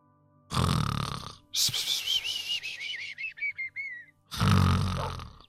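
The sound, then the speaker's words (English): A person imitates cartoon snoring: two loud, rasping snores bracket a high, wavering whistle that slides downward in pulses, alone, with no talking. “I almost forgot that this was an actual episode and I almost didn't do the snoring thing.”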